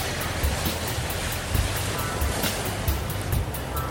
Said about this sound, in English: Give you a few seconds of pure, uninterrupted sea for your listening enjoyment.